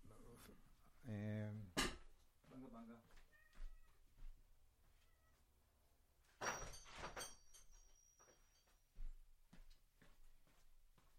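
A cat meows loudly, then pushes a door open with a short scraping rush of noise, followed by a few faint clicks and scattered household sounds.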